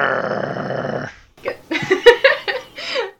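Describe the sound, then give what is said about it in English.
A person imitates a growl: a rough, raspy rumble held for about a second, then after a brief pause a run of short, choppy voiced grunts, fairly loud. “I'm supposed to growl?”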